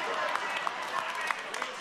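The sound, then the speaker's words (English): A few scattered, uneven claps from a church audience during a sermon, sparse and fairly soft, spread across a couple of seconds against a faint murmur. “I lost a few claps here.”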